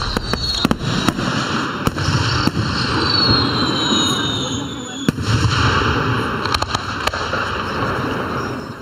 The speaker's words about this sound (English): Some of the fireworks that are going to go off this weekend around the Delaware Valley and over the Delaware River and down in South Jersey